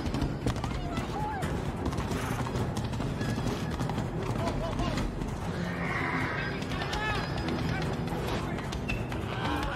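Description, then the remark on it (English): Horse hooves clip-clop in a busy, continuous rhythm while horses neigh and whinny, with crowd noise and talking in the background throughout. “What a horse doing?”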